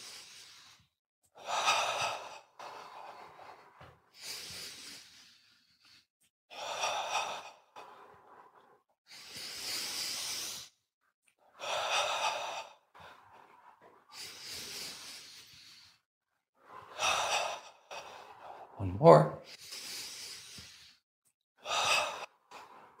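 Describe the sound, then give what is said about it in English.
Slow, deep breaths drawn in and let out one after another in a steady rhythm, clearly audible, with a brief spoken word near the end, as a man takes ten deep breaths in a breathing exercise while swaying his arms forward and back with eyes closed. “Notice his breath is getting longer because that's what happens.”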